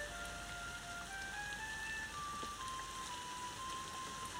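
Steady rain hisses continuously across the whole recording, with a thin, tinkling melody of single notes playing over it. No one speaks.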